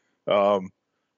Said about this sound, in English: excuse me, I'm dealing with some cold issues. So if I cough, I'll try to mute.